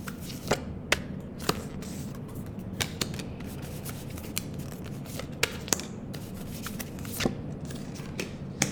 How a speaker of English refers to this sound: And with that, I'm going to pull some cards for the collective energy of anyone who's listening. Hope you can hear that shuffle.